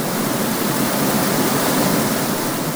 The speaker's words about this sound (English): A cheer went up when the water began to pour down, first in a trickle, then in a steady gushing flow.